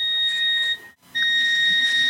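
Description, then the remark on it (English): A washing machine gives off a loud, steady electronic beep because its door is open, a sustained high tone that cuts out briefly partway through, then resumes and holds. No one speaks. “Again, it's beeping at me because the door's open.”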